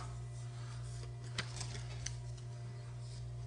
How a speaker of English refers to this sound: Shuffling these up. I wrote the real answer on one of these pieces of paper, so you're not getting any clues.